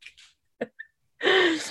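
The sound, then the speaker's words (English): Someone sneezes: a few sharp inhaling gasps, then a loud, explosive burst of breath and voice that trails off over about half a second. “Sorry, sneezing.”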